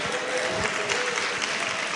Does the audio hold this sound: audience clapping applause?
yes